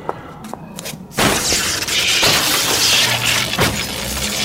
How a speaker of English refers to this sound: I smashed the computers with the axe.